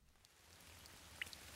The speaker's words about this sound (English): It's a cold and rainy Tuesday night in Adelaide, Australia